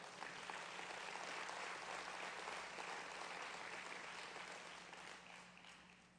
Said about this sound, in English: Give Jesus a good hand clap.